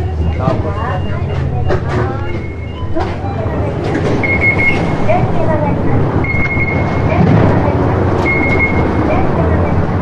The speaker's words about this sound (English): That beeping and repeating sound, that's a cement truck making a turn. In case you're wondering.